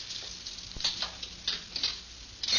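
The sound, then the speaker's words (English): Keys jingle and scrape against a car trunk lock in a string of small metallic clicks and rattles, fairly quiet, as someone tries keys to unlock the car's rear compartment, with no voices. “Now, which one of these keys unlocks this?”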